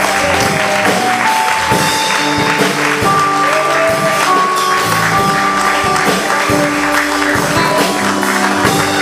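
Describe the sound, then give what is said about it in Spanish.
A church audience applauds for Jesus in a loud, steady wash of clapping that lasts throughout, with sustained musical tones ringing underneath. “Te damos un fuerte aplauso, Jesús. Otra vez.”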